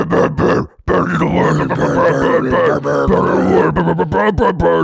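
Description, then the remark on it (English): A voice imitates a Norwegian surfing death metal growl: a loud, gravelly, sustained rasp that breaks once after a brief gasp, then rumbles on for several seconds with rough, wavering low tones. “Right, but this is specifically Norwegian surfing death metal. Yeah, the classic is a sort of nightmarish growl.”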